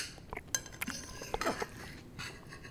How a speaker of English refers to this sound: You know, it's not nice listening to other people eat.